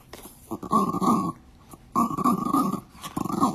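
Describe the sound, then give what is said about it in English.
A dog growls and grunts in three rough, rumbling bursts, the first two long and the last one short, with brief pauses between them and no talking. “We got a dog that wants to say something.”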